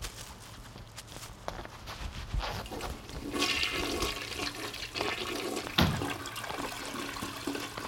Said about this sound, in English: You're not supposed to flush the toilet.